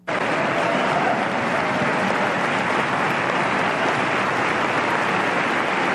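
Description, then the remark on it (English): A crowd applauds a speaker for saying that abortion sucks, a dense, steady roar of overlapping claps that starts abruptly and holds at an even, loud level for several seconds, with no voices heard. “And so this is everybody clapping for him saying that abortion sucks.”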